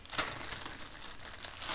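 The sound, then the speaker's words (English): Steady crinkling and rustling of plastic bags being handled, with belongings wrapped in about five different bags, with sharp crackly bursts throughout and no talking. “Well, yeah, I mean, look, sorry, I've got my shit wrapped in, like, five different bags, so there'll just be a bit of rustling for a second.”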